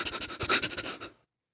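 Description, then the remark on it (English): A voice imitates the panting of a monster under a bed: a quick run of about ten rhythmic, breathy huffs, fairly loud, that stops abruptly after just over a second. “Bounces around excitedly, accompanied by the sound of the bed monster panting and making monster noises.”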